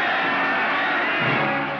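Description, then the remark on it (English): In a film, a panicked crowd across Europe screams as dead soldiers of the World War rise and march, a dense, unbroken wall of shrill voices, loud and steady for about two seconds with no clear individual words. “Here are the screams.”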